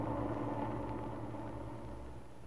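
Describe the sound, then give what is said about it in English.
A small truck engine idles steadily with a low, even rumble, fairly loud, tapering slightly toward the end, as the truck is parked across from a town square. No voices are heard. “Lefty parked the little truck across from the square”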